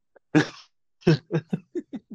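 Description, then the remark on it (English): One person coughs in a quick fit: a harsh, explosive first cough followed by a string of six shorter coughs that grow softer and quicker, clear with no talking. “No, more like cough, cough.”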